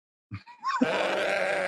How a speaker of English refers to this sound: Sheep on ketamine. Study reveals what happens when you fall in a K-hole. So there's scientists out there putting sheep on drugs.